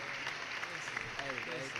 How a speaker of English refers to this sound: That's a round of applause. That's enough for a round of applause.